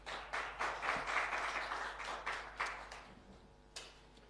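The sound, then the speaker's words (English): An audience at a presentation applauds to welcome a speaker, a dense patter of many hands, steady for a few seconds before thinning out and fading, with one last stray clap near the end. Rather quiet. “A big round of applause, please.”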